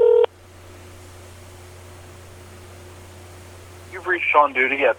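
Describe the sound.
A short electronic phone tone, then several seconds of hissy, humming phone-line noise while an outgoing call connects, before a voicemail greeting comes on the line near the end.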